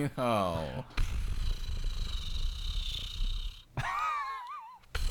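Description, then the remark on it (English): A voice imitates a helicopter rotor with a low, rapidly fluttering buzz held for about three seconds, framed by short sliding vocal sounds before and after. “I'm helicoptering away.”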